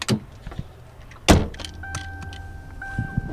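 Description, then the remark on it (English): Someone climbs into a car: light shuffling and clicks, a solid car door thump, then a steady electronic warning chime sounds over a low engine hum. “All right, well, let's get in the car and let's do this.”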